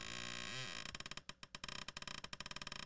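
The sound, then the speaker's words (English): A chair creaks, starting with a drawn-out groaning tone that slides up and down, then breaking into a fast series of ratcheting creaks. No one speaks. “we fucked around and took recordings of a chair sound”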